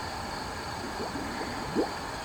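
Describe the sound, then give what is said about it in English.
Steady wash of water with soft gurgling and a few bubbling pops as a BMX bike caught on a hook is pulled up out of the water, one slightly louder burst near the end, no voices. “Lots of gurgling and bubbling.”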